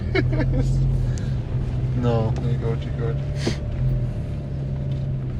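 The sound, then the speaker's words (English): A steady low engine drone and road rumble fill a car cabin as the car drives around many turns, constant throughout, while a person speaks briefly over the hum. “Getting a car sick. All these turns.”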